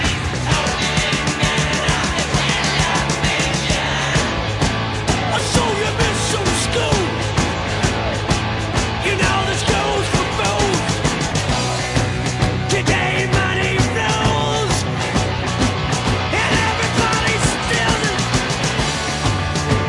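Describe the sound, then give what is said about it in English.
A loud, dense rock song plays throughout, with driving full-band instrumentation and a male singer on the verge of yelling over the steady beat, finally letting loose into a raw yell toward the end. “kind of on the verge of yelling. And then towards the end, he finally just lets loose.”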